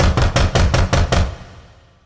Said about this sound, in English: As I tried to stifle a scream, she raised a hand and knocked loudly on my front door.